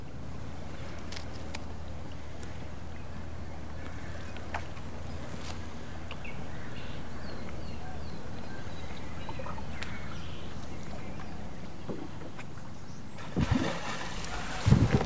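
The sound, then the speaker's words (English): A beaver plunges into a river with one abrupt splash near the end, heard from a silent canoe as it is getting dark, breaking a quiet stretch of soft low rumble and scattered faint chirps, with no voices. “That was a beaver. It just jumped into the river.”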